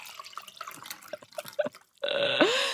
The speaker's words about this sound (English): Let's get some wine pouring into a goblet.